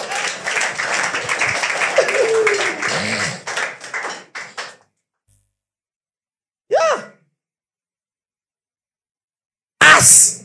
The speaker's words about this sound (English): Clap for Jesus.